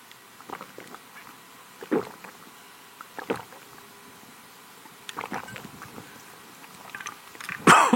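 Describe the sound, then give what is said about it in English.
Someone drinks a glass of water: a series of soft, irregular sips and swallows with quiet pauses between, ending in a brighter, sharper clink as the glass is set down. No one speaks. “Just take a minute and read that over again to yourself as I take a drink of water.”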